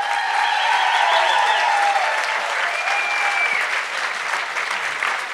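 An audience claps steadily for about five seconds to welcome a guest, a dense, sustained wash of applause that stays loud throughout with a few faint whoops mixed in.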